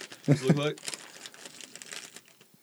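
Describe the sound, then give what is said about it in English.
A brief voiced sound at the start, then a steady run of crisp, crackling crinkles as the wrapper of a small candy like a cough drop or a large Tic Tac is handled for a couple of seconds, moderately loud with uneven snaps. “I mean, it's like a fucking Tic Tac in a wrapper.”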